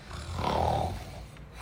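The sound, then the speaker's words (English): A single rough, nasal snort lasting under a second, with a raspy, breathy texture over a low rumbling tone, then fading. No one speaks. “Is that a honk? It's a disagreeable okay. snort.”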